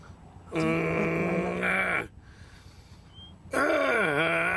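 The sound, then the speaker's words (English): An upset dog lets out two long, loud moaning howls, each drawn out for over a second and sliding downward in pitch at the end, with a short quiet pause between them. “The dog's upset.”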